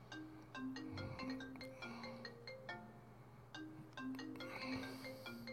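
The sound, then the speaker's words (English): A phone ringtone plays a bright, repeating electronic melody of quick tonal notes throughout, steady and continuous over a low background hum, with no one speaking. “How do I stop the thing from ringing?”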